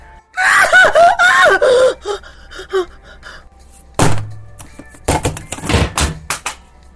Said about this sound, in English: The vampire locks eyes with the woman and blows her a kiss. The woman screams and drops the iPad.